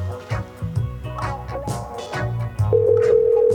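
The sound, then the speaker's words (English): A phone call being placed: a steady electronic dialing tone starts partway through and holds, sounding over continuous background music with no voices. “I'm going to call Mitch right now.”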